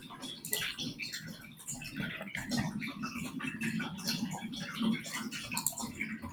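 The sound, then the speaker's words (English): A cat's water fountain runs, its water trickling and splashing steadily in the background, a soft continuous babble with tiny drips and patters throughout, fairly quiet. “Is there water in the background? Yeah, there is. There's a running water feature.”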